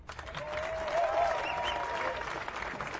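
A crowd applauds steadily, a dense wash of clapping that holds at a fairly even level for a few seconds, with a faint whistle or cheer rising briefly in the middle.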